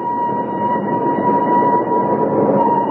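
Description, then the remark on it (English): A train rumbles in with a steady, drawn-out whistle sounding over the low roar of the engine and wheels, loud and held for several seconds without a break. “Hope he's on this train, Uncle Flax.”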